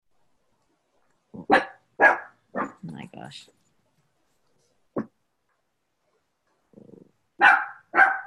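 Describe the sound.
A dog barks several times in short, sharp bursts, fairly loud, with pauses between, while a person speaks briefly in between the barks.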